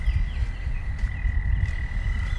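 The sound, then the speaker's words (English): A chorus of frogs sings in a steady, unbroken high-pitched trill over a low, rumbling background, with fainter chirps scattered through it. No one speaks. “Of course, these frogs singing.”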